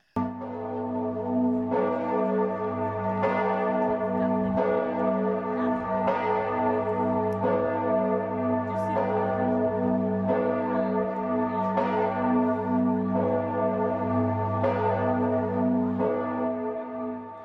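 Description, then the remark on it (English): The bells of a baptistry peal continuously. Bright strikes repeat every second or two, layered over a deep, sustained humming resonance. The ringing stays loud and full throughout, with no voices. “Bells in the baptistry started to ring.”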